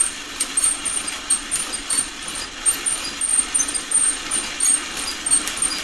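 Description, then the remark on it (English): Coffee beans roasting in a kitchen in a Whirly Pop hand-cranked stovetop manual popcorn popper: a steady, rhythmic metallic squeak from the crank with beans rattling and scraping beneath, fairly loud, no voices. “that's the sound of coffee being roasted in a Whirly Pop popper, which is a stovetop manual popcorn popper”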